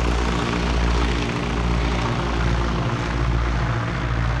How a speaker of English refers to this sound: The Spartan aircraft chugged above the crated rice paddies below, on its way to the relative safety of neighboring Thailand.